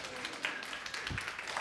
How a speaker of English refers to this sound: Also, my wife. My wife, come up. Everybody clap for my wife for sure.